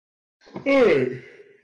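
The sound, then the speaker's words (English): A person yawns once: a breathy intake swelling into a drawn-out voiced sound that slides downward in pitch, then trails off into a soft exhale. No one speaks. “stop yawning during cast.”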